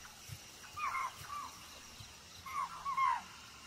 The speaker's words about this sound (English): The deer call is not for her.